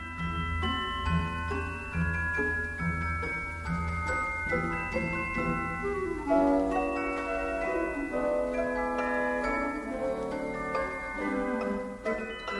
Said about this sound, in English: That beautiful bell-like sound ringing out above the orchestra is a celesta being played by someone sitting at a keyboard that looks a lot like a piano.